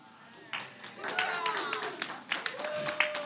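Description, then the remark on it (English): An audience breaks into scattered clapping, irregular sharp claps building after a quiet start and continuing steadily, with voices murmuring and calling out underneath. “You don't need to clap.”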